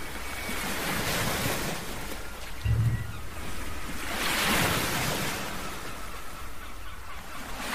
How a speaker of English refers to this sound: And I want you to remain here with your hand on your solar plexus and your hand on your heart center, and just breathe comfortably as you listen to the ocean.